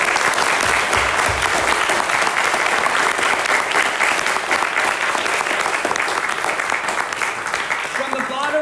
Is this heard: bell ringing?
no